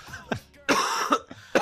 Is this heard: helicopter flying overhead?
no